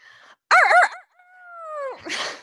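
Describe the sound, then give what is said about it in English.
A voice imitates a coyote: a short whine, then a loud warbling yip-howl and a long sliding howl that drops off, ending in a breathy burst. Fairly loud, with no talking. It is a competitor's signature call, performed to preview an upcoming Movie Trivia Schmodown match. “And to me, one of the most anticipated matches that I can imagine is the …. Let me hear it”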